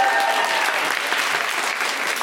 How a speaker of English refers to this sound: But get a clap for me, man.